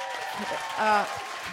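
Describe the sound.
A round of steady, dense applause from a crowd, the claps blending into a continuous hiss, with a voice speaking over it and a brief swell in loudness midway.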